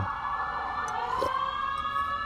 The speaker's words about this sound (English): Sorry, these sirens in the background. It's the South. What can I say? Welcome to the USA.